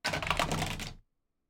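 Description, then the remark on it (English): A quick burst of dense plastic clattering as two six-sided dice are rolled for a tactical roll, rattling and tumbling as if across a tray for about a second, then stopping dead into silence. “Wish me luck here. Mwah. Hey, lucky dice.”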